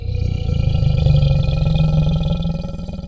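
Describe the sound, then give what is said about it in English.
A person growls a long, rumbling roar imitating a prowling tiger, loud and sustained for about three seconds with a gravelly, throaty texture before trailing off. “Tiger on the prowl.”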